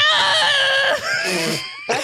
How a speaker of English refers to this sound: is screaming his mind off.